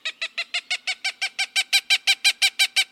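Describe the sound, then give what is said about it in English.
A Cooper's hawk gives a rapid, steady series of harsh, nasal cak calls, clear, about eighteen in three seconds, growing slightly louder as the chatter goes on, with nothing else audible. “The Cooper's hawk is a fearsome sight, with a razor-sharp beak and unflinching blood-red eyes.”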